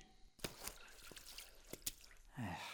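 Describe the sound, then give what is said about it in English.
Water drips from a leaking new roof in a handful of sharp, irregular plops, fairly loud against a faint background hum, before a voice starts speaking at the very end. “How the hell are we getting water in here? It's a new roof, for Christ's sakes.”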